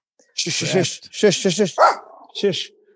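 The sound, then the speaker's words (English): A dog named Milo barks loudly in quick, sharp bursts, a short run of several yaps followed by a pause and then one more bark. “There you go, puppy.”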